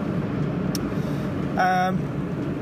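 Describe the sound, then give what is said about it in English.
Steady low rumble of heavy motorway traffic heard from inside a moving car in the morning, a constant droning road noise with a brief higher-pitched tonal sound rising over it partway through. “I'm not too sure about the sound quality on this one because I'm recording it as I move along the motorway in quite a lot of traffic.”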